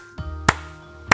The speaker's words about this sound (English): I don't mean that to be a slow clap.